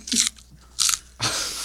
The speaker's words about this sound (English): Dude, quit. Please. What are you even chewing? Celery? Where did you get celery? There's whole veggie sticks.